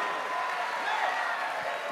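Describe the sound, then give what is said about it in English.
A crowd claps and shouts unto God in a steady, dense wash of applause, with indistinct cheering and raised voices mixed in, holding at an even loudness throughout. “Clap your hands, all ye people. Shout unto God.”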